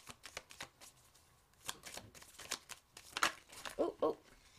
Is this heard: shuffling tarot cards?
yes